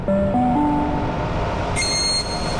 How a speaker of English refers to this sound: First stop, the train on platform.